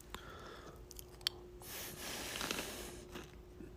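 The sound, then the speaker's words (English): Chewing of popcorn, with soft crunches and wet mouth sounds repeating unevenly for a few seconds. No one speaks, and a faint steady hum sits underneath. “I'm sorry I'm chewing popcorn here.”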